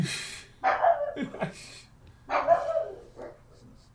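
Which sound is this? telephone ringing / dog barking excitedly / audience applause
dog barking excitedly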